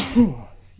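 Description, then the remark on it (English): A single loud sneeze: a sharp breathy burst that trails into a short voiced tail, then quiet. “Just sneezed the hell out of you.”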